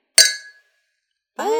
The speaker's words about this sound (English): Oh, that was good. That real glass champagne clink. Yeah, that sounds nice.